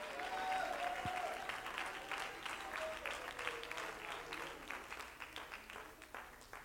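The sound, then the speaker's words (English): An audience at a church service claps together in response to the preacher's questions, in a dense, steady wash of applause that slowly thins out, leaving more distinct individual hand claps toward the end, with faint voices underneath. “And if you've testified today and said amen, clap your hands in response to any of these questions that I've asked,”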